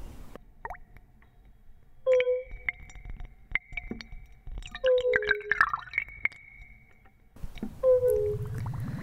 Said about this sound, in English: The work begins with the sounds of shells and tuning forks struck and submerged in an amplified ball of water.